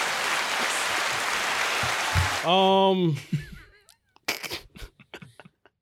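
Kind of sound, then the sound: sound effect, applause sound effect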